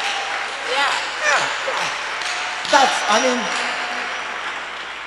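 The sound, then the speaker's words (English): A church audience claps steadily in a dense, crackling patter that runs the whole time, with a voice calling out briefly over the applause. “Hey, I thought you would clap that one. I thought you'd be clapping.”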